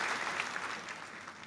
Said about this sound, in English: I give you a round of applause for that.